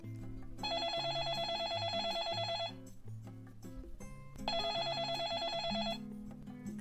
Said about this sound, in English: Let's imagine another scenario where you, the exchange student new to Korea, are at home alone again. Your host family has a landline phone at home, which starts to ring.